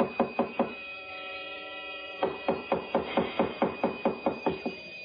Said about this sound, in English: Oh, now, please. Don't batter down the door.